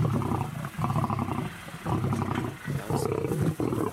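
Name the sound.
lion roaring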